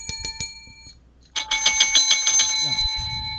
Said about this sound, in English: And you're going to hear that bell every time we hear it. And then maybe if we hear something really perverted, we'll go.